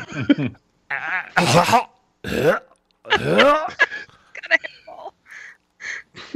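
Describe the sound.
A voice mimics hawking up phlegm: a series of raspy, gurgling throat-clearing bursts and harsh hacks, loud and irregular, trailing off into a few short, softer grunts.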